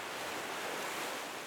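A steady, full-bodied wash of ocean surf breaking on a beach, a continuous rushing roar at even loudness throughout, with no voices.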